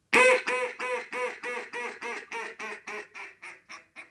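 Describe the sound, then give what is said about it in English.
A duck call blown as a greeting call to catch the attention of ducks and draw them in: about a dozen evenly spaced, raspy quacks in a steady cadence, starting loud and stepping down in volume toward the end, with no talking. “Then I'll hit it with kind of like that greeting call to catch their eye, get them coming a little better.”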